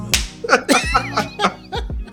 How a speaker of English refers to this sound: I'm slapping everybody in this hangar.